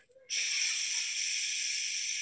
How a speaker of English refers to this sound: And then you exhale with your mouth, with your tongue or lips.